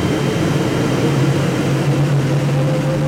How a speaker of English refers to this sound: Then we hear this sound like a jet engine starting up.